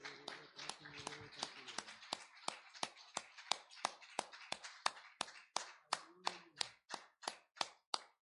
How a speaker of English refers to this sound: In Jesus' name. Let's clap our hands again and worship the Lord.